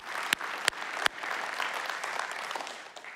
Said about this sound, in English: All the sides and all the venues, guys. Big round of applause, big celebration. Fitchburg, we love you guys. You guys rock. All right, let's hear it.